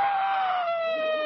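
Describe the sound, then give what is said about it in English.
A hungry baby on a train wails in one sustained, high-pitched cry that slowly slides downward in pitch, loud and steady throughout with no talking over it. “No, there, don't cry.”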